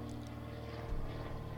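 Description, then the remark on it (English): A small propeller plane circling repeatedly overhead, a steady buzzing engine hum with a low harmonic growl. It is moderately faint and continuous, with no one talking. “This plane has literally been making circles.”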